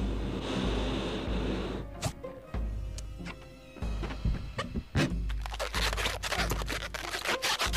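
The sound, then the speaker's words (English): Rubbery squeaks and scratchy scrapes of a balloon being twisted into a balloon figure of the Empire State Building, with sharp snaps and clicks scattered irregularly throughout and no one talking. “You want another balloon animal?”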